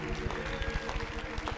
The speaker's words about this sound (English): If you love this man, can you clap your hands and give him a big Kansas City welcome?